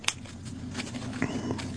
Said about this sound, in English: Remember, this is a brand new deck. All right. Brand new deck. Just give it a couple more shuffles.